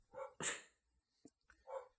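dog barking

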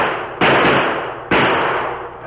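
gunshot

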